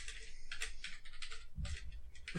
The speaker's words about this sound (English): I hear typing.